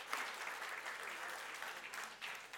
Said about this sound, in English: I'd like to start by asking all of the dads in the house, everyone, if you would just please stand. Stand up. Give them a big, big round of applause.